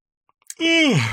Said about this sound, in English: Sorry, I'm tired. I'm just going to yawn into the microphone.